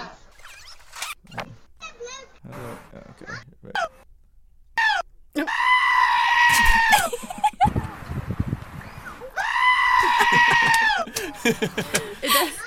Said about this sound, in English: Play that again. Well, it keeps going with other goats. This is a goat screaming.